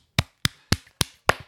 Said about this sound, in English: Can we get a drum roll? No, we can. You can get a clap.